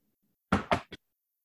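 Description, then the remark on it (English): Three knuckle knocks on a wooden surface: two solid raps followed quickly by a lighter, shorter third. “Knock on wood.”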